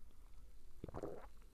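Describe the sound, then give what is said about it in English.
A single wet gulp of a cold, cider-tasting drink, a short click followed by a gurgling swallow lasting about a quarter second, quiet and isolated with no talking. “Gulp. ASMR. You're drinking.”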